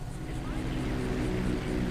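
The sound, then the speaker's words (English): A steady, low engine drone of an airplane passing overhead, holding at an even moderate level throughout with no breaks, its rumble sitting mostly in the low end. “Oh, I hear a plane.”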